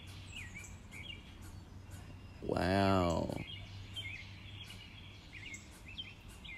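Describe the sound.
Woodpeckers call outdoors in repeated short, chirpy bursts over a steady low hum, with one person briefly exclaiming partway through.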